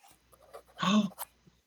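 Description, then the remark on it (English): A scratchy pen stroke drags briefly across paper in a Moleskine notebook as lines are drawn, followed by a quick tap, with faint rustling before and after in an otherwise quiet space. “I heard some scratchy too.”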